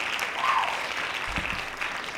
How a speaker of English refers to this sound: Yes. Hand claps for that. Turn him up.